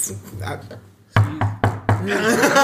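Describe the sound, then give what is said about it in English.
Four solid, hollow knocks on a wooden table's underside land in quick, slightly uneven succession, fairly loud, while someone keeps talking before and around them. “For those who are wondering, that's not the door.”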